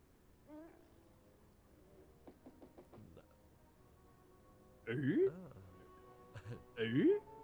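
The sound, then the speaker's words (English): A quick, faint series of about five knocks on a door, followed a couple of seconds later by two bursts of loud, growling creature-like vocalizations. “I love that they still knock”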